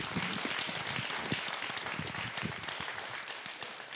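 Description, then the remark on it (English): A church crowd bursts into sustained applause celebrating people's faith decisions, many hands clapping in a dense, steady wash that holds at an even loudness before thinning slightly toward the end. “So can we first start by giving them a hand and celebrating those faith decisions?”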